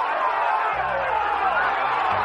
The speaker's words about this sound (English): The roar of the Sunday crowd.